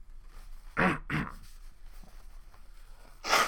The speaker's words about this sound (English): I'm sorry about coughing your ear right there. The kush is really strong. And that bong toke makes me die.